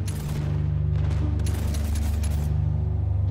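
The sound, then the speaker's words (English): Muffled gunfire from a few blocks away in a town's housing area, a few dull cracks and bursts over a steady low rumble, with no voices. “And as we watch her take the street that leads out of town up the hill to their castle, to the breach, you hear a few blocks over the sound of gunfire.”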